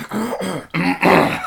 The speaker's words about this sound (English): It kept sounding like she had something in her throat, and you get that... That empathetic feeling where you just want to clear your throat.